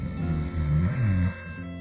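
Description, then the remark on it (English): A voice imitates snoring: one drawn-out, rumbling, low-pitched snore lasting about a second, fairly loud, then a quieter trailing breath. “He resumed snoring.”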